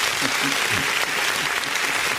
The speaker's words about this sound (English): I got to give him applause now.